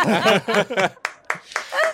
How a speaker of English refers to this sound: Spectral Jonnet has worked his way into the spectral crowd and is applauding you.